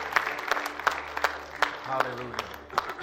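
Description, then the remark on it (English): An audience applauds with steady, scattered clapping, individual sharp claps popping out of a continuous patter, while a low hum and some murmuring voices sit underneath. “Clap offering, amen.”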